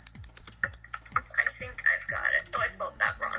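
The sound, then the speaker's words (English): Rapid, uneven clacking of keys on a computer keyboard, fairly crisp, with short bursts of keystrokes running continuously for a few seconds. “And while you're typing that up, be sure you've already thought of your thought of the day.”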